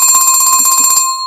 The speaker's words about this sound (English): Phone call.